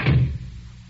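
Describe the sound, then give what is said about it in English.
A door swings shut quickly with a single solid thud, fairly loud, its low rumble fading fast into quiet. “Close the door, quick.”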